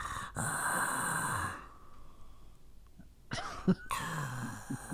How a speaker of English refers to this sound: Nope. It's my dog snoring. My dog. As if I'm not acquainted with him.